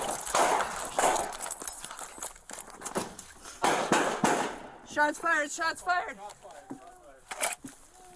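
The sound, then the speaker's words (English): A rapid, loud exchange of pistol shots between police officers and an armed suspect hiding in a storage area cracks back and forth in quick irregular bursts, then gives way to raised, urgent voices with a few more scattered shots. “He aimed the pistol at the officers, which resulted in an exchange of gunfire.”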